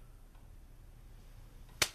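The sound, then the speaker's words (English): A single sharp slap of a right hand striking a man's face rings out near the end, a crisp smack following nearly two seconds of quiet with no talking. “Slap him.”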